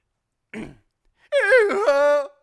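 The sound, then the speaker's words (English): A person imitates a raptor dinosaur: a short raspy huff, then a loud, wavering, shrill screech held for about a second, alone with no talk. “That's when that was a raptor.”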